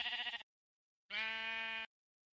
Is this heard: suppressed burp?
no